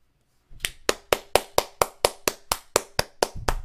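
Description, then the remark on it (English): A single pair of hands claps about a dozen times in a quick, steady rhythm, fairly loud, with no talking over it. “I'd clap, but I'm holding up my mic filter”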